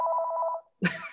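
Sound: phone ringing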